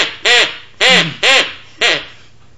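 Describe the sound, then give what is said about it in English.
A person imitates a duck, giving four loud, nasal quacks in quick succession, with short pauses between each and no talking. “I rode on a duck.”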